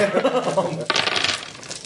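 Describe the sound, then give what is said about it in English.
Dice rolled during a tabletop game clatter and tumble across a hard surface in a quick burst of bright, rattling clicks that settles after about a second, with faint voices murmuring underneath. “You better roll well.”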